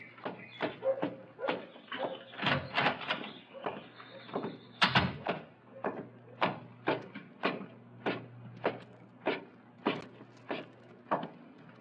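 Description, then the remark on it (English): A door is opened with rattling clunks and a heavy bang, followed by a long run of steady, evenly spaced thumps, like footsteps, over a low hum. No one speaks. “Just open the door and come on up.”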